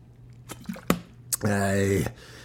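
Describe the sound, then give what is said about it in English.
Sips of water from a bottle: a few wet clicks and smacks, then a half-second gurgling swig whose hollow, tonal resonance rises in pitch as the water moves, heard alone without talk. “And you know I got my co-host in this thing. Water, man. Water is key.”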